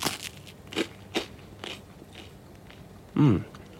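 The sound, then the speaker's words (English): Crisp crunching as someone bites into a piece of warm, freshly baked sourdough bread, a few sharp crackly bites spaced out over a few seconds, followed by a louder, fuller chewing crunch near the end. “So let's have a piece of sourdough bread.”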